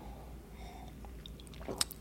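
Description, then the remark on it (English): A quiet sip of a ginger shot, with faint wet mouth sounds and a short slurp near the end over a low background hum. No one speaks. “You gave me a ginger shot, right? I'm about to sip it.”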